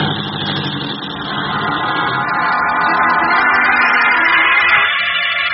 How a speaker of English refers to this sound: As the taxi bearing Lois Lane drives off, Clark Kent ducks into a narrow space between two buildings.